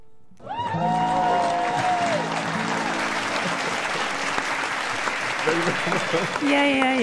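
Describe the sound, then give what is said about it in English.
A song's last sustained notes give way to loud, steady applause from an audience in the Pulse 95 studio after a live artist's performance. The dense clapping continues for several seconds before a voice begins to speak over it. “A big round of applause one more time.”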